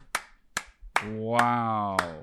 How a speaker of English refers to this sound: Don't clap for yourself. It's nothing. Knowing that is nothing, dude.